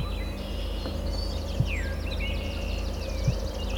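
Alder flycatcher song, a brief buzzy phrase among faint, high chirps and sliding whistles from other birds, including willow flycatchers, all over a steady low hum with a couple of soft thumps.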